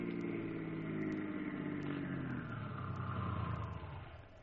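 A car engine hums steadily as it drives, then its pitch sinks as the vehicle slows and pulls up, the rumble easing off at the end.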